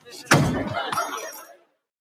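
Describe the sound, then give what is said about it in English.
A sharp impact followed by a bright metallic clink and brief ringing clatter as a small star falls off a dressing-room door and settles, fading out after about a second. “the clink at the end of the star falling off of Miss Piggy's dressing room door”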